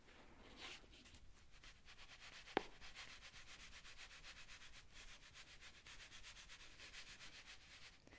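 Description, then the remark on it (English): Sand is smoothed flat by hand in a steady, soft, gritty rubbing that continues throughout, with one brief sharp click partway through and no talking. “I want to flatten it all out and try to create that.”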